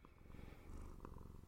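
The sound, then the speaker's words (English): A cat purrs steadily and close to the microphone, a low continuous rumbling vibration with a brief higher chirp partway through, and no one speaks. “Do you like it? Do you like being a cat?”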